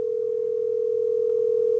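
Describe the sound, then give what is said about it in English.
A steady, unbroken telephone tone hums at one pitch for the whole two seconds, loud and clear, with no voices, as a call is being placed. “If he's in here, I'm fucking calling him.”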